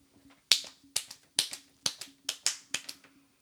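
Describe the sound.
Imitated galloping hoofbeats (a rataplan, the sound of a galloping horse): about eight sharp, bright clicks tapped out in a quick, slightly uneven rhythm, with no talking.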